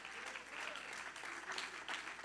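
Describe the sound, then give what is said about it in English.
An audience claps their hands together, a dense, steady roar of overlapping claps with no distinct rhythm, fairly loud and continuous throughout, with no voices standing out. “Everybody clap your hands and shout, yes.”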